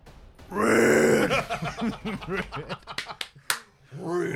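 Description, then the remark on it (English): A man voices a Barenthal Punisher growl as his yell, a low, rough, sustained guttural rasp that breaks into choppy, throaty grunts and ends with a sharp click and a short final growl. “I do a Barenthal Punisher growl, and I just go.”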